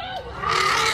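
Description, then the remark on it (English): A charging elephant lets out a harsh, brassy trumpeting cry that swells sharply halfway through and holds loud and rough to the end, with a low rumbling undertone. “This is the moment the elephant charged them.”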